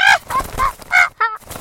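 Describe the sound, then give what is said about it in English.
A parrot named Caesar squawks in a quick run of about five harsh, nasal calls, fairly loud, with short gaps between them and no one talking. “He's got a wicked-looking eye, that parrot.”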